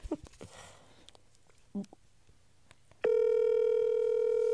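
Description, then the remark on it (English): A loud, steady telephone tone of an outgoing call sounds without a break for the last second and a half, after a few soft clicks and brief murmured voices. “It's just like a phone call.”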